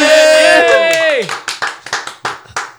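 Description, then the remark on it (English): Tabletop role-playing game players let out a loud, falling cheer together after a critical success, then it gives way to a run of about seven steady hand claps. “Every time we cheer.”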